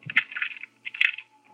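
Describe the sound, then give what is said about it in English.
Keys jingle and scrape metallically in two short bursts, each marked by a sharp click, as a man works his key into the lock of his room door in the evening. No voices are heard. “When he put his key into the lock, I was strolling toward him.”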